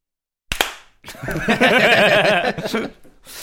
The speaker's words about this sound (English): Is that our soundbite now for punchable faces? A slap at the end.